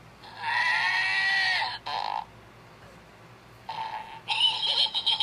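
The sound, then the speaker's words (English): An electronic toy lets out a raspy, cartoonish laugh that sounds like Scooby-Doo, in loud bursts: one long warbling cackle, a short burst, then a choppy, stuttering run of laughter. No one speaks. “Seriously, don't you think the laugh sounds like Scooby-Doo?”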